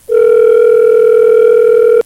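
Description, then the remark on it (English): A steady telephone dial tone hums at a constant mid-low pitch for about two seconds, loud and unbroken, then cuts off with a small click as the call is placed. “So let's give Jan a call.”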